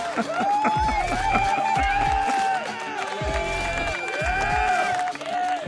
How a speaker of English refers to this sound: Could you hear the crowd cheering? We could. My daughters love that sound effect.